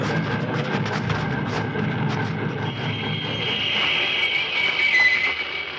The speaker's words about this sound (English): Stop that locomotive, or we'll shoot.